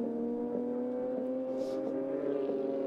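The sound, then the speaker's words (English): A Porsche GT3 Cup race car engine drones loudly and steadily at high revs as the car passes, its pitch shifting slightly, with no voices, as the race leader comes to lap the number 11 car of Sean McAllister in relatively chilly conditions. “Here's the leader coming to lap him, and off again for the number 11, Sean McAllister.”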